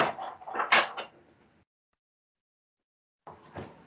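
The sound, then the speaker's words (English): Metal utensils clatter and scrape as someone rummages through a kitchen drawer looking for an orange-peeling utensil, a burst of rattling followed by a pause, then more clinking. “No, there's an actual utensil. I'm gonna go and find it from the drawer now.”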